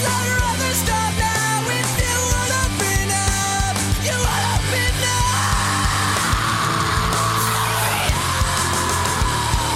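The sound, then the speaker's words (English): A loud, dense rock track with pounding drums, where a harsh screamed vocal tears in around the middle and holds for several seconds over the band. “See, I could do the first scream, but then when it keeps going, I'm like, nope, that's enough.”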